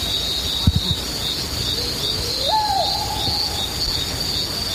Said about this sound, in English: Owl? That's an owl.